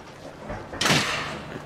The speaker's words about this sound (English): What was that? Is that when someone slammed the door super hard?